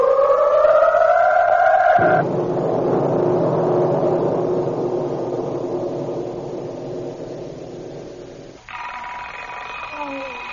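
An alarm clock rings loudly at the bedside of Fred and Betty Folger, a harsh, continuous metallic clatter lasting several seconds, framed by brief stretches of steady, rising electronic-sounding tones at the start and end.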